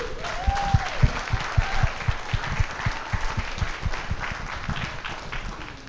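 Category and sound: crowd, audience round of applause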